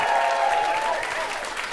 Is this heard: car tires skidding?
no